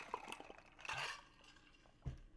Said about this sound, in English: Sorry, I'm just crunching ice in your ear.